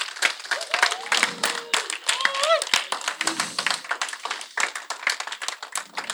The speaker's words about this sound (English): Can we give Bug another round of applause? Like, God.